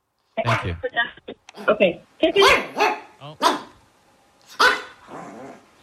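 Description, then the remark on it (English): A small dog, Pippin, heard over the phone, lets out a run of sharp, yappy barks mixed with throaty growls, coming in irregular bursts with brief pauses between them. “Put the phone up to the dogs.”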